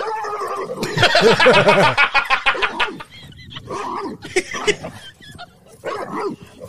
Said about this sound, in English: He's barking at the ball while it's in his mouth and is shaking the fuck out of it.